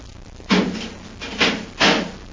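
A heavy door to a tunnel swings shut behind people, loud, with a strong initial clank followed by two more bangs as it settles and latches. No voices.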